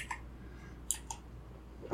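A few scattered keystrokes click sharply on a computer keyboard, spaced irregularly over a quiet background hum, moderately loud, with no talking.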